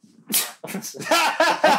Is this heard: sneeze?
yes